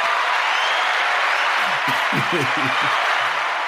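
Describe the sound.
A large crowd claps and cheers in a dense, steady roar that stays loud throughout, with a voice briefly audible under the noise partway through.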